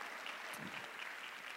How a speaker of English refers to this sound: Secondly, you give yourselves a round of applause.